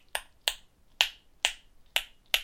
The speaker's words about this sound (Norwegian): Det at du selv sender ut ditt eget sonarsignal. Daniel Kish kaller dette for selve den klikkemetoden. Måten å lage sonarsignaler på kaller han for flash sonar.